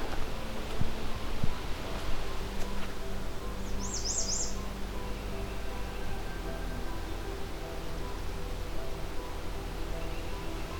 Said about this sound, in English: So that was Canada Warbler potential territory. Kind of in a swampy area. Trail running through it opens up into a marshland. Not too far from the lakeshore, but that's not a requirement.